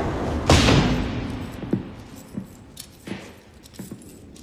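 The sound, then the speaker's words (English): Heavy metal prison doors slam shut, one loud booming clang followed by four lighter, evenly spaced clanks with a faint metallic jangle, echoing, with no talking. “You can't tell from all the doors closing.”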